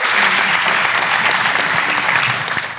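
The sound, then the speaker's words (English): A live audience claps loudly and steadily, repeating its applause on request, a dense wash of clapping that holds strong throughout and only begins to ease at the very end. “Can you do that applause that you just did again?”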